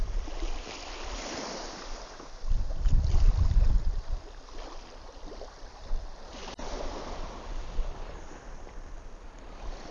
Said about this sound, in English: I'll be back, let you have the waves for a while, and then I'll be back, and we'll see what happens.